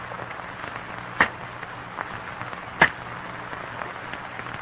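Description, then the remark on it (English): Two sharp, crisp cracks of cane knives chopping sugar cane stalks at dusk on a tropical cape, spaced over a second apart, stand out above a steady, soft rustling hiss, with the crackling of falling cane leaves. No one speaks. “In the strained silence, the men listen to the sharp crack of cane knives on stalks of cane.”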